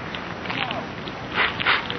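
A match is struck with two quick rasping scrapes, followed by the soft hiss and faint crackle of a newspaper catching fire as a woman lights the paper a man is reading, with no one talking.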